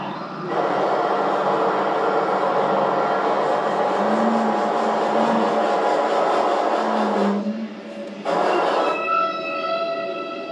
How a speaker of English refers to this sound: So that is the sound of a ship.